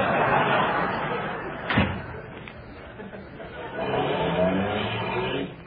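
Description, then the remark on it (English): A single sharp car door slam cuts through steady background noise, followed by a car engine rumbling and driving along, its drone swelling in the final seconds. “Can't this car go any faster?”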